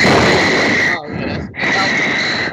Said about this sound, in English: breathing hard.